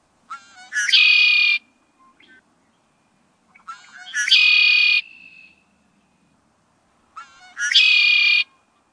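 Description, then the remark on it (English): A male red-winged blackbird sings its song three times in early spring, establishing its territory, each a few short notes rolling into a loud, buzzy trill, with brief quiet pauses between. Clear, with no talking. “But our very favorite and surest sign of returning spring is the red-winged blackbird's song, as the males establish their territory.”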